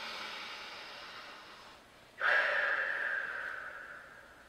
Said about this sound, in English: And breathe out through your mouth as if you have a straw.